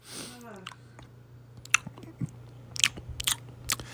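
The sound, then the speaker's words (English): Chewing of chocolates, with moist smacking and a few sharp crunchy bites scattered irregularly over a quiet steady hum, with no talking. “I'm chewing on chocolates.”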